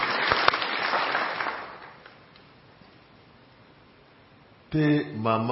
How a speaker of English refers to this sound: He healed her. Won't we applaud what Jesus did this morning? Amen. Amen.